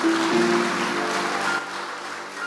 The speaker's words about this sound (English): You can clap your hands.